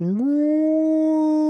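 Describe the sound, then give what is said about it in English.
A person imitates a whale call with one long, loud moaning tone that slides upward briefly, then holds steady for over a second. “Yeah, I like the whale, you know, with the other whale on top of the semi truck.”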